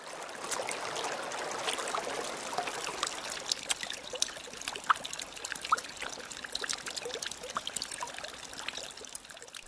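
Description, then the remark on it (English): Water is poured to give someone a drink, pouring steadily and trickling for several seconds in a continuous splashing rush with small bright drips scattered through it, moderately loud, with no voices. “Alright, I'll give you some water.”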